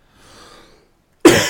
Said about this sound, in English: Excuse me, cough.